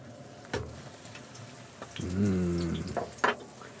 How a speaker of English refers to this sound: All right, a little shot. of some oil to cover the bottom. Let that heat up. Starting to shimmer nicely. Not a lot to say about the pan frying process.